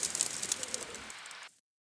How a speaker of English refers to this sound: I remember hearing the birds on the bridge near my house and thinking that they sounded like they'd been imported from an extremely low-res sound effects library.